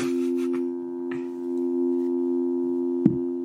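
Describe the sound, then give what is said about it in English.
A steady, unbroken low electronic tone like a telephone dial tone drones for the whole clip, with a few faint clicks and taps, including one sharp tap near the end. “Sounds like a dial tone.”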